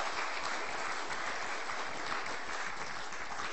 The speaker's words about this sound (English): another wee round of applause for narrating it.